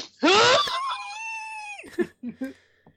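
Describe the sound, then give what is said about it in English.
A woman's stifled, inward scream in a film scene: a harsh burst, then a thin, strained high-pitched wail held for about a second, followed by a few short, breathy gasps, fairly loud. “I want you to inward yell.”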